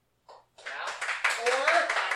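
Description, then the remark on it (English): A crowd breaks into applause that swells and stays loud, dense clapping mixed with cheering and shouting voices, after a short burst of noise at the start. The applause is a vote for the film Any Given Sunday. “Now, by round of applause, we're going to be doing it.”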